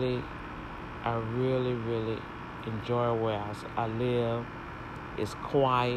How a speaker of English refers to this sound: What you're hearing is the air conditioning unit. That's the most noise that you're gonna hear out here, or if they're moving something around.